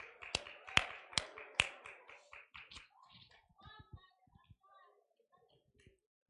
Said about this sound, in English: Okay, let's give the Lord another hand clap while you make your way back to your seats.